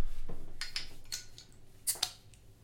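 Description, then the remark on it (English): Beer cans being cracked open: a series of sharp metallic clicks and pops, the last two crisper and followed by a brief fizzing hiss, all fairly quiet with no talking. “Well, hey, let's go ahead and crack these bad boys open.”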